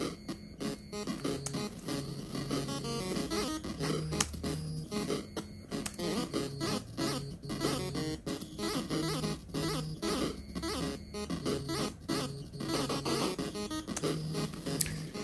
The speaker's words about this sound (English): I like the sound effect of that cat talking. It's nice. You guys just heard it then.